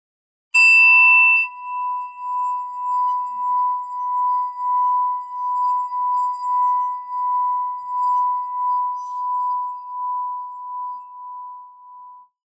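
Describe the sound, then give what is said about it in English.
A singing bowl is struck once with a bright ringing attack, then rimmed into a steady, pulsing mid-pitched hum that wavers in loudness for about twelve seconds before fading out. “That's a good bang. That was like nine rotations?”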